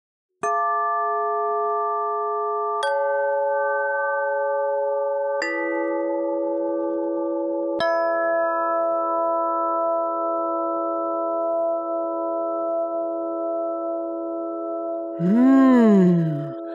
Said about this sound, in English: Those beautiful chimes wake up my ears, and I feel my heart open, and it hears them too. Don't the musical tones sound magical?